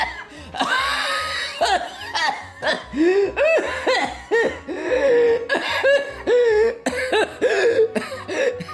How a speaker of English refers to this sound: The coughing means it's working.